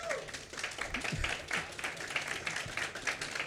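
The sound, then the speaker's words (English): A crowd applauds steadily for Dr. Anka Constantin, a physicist hosting the program, many hands clapping in a dense, even patter that holds for several seconds at moderate volume. “A round of applause for Dr.”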